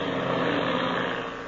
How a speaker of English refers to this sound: The engine is laboring as the plane climbs at a steep angle.